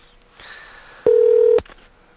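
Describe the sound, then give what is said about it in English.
A Skype call-dialing tone: one loud, steady electronic beep lasting about half a second, preceded by a fainter, softer tone. No one speaks. “We called you on Skype today instead of the regular telephone because I was having some phone issues”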